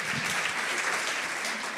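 Steady audience applause fills the whole stretch, a dense, even wash of clapping hands with no break and no voices rising above it.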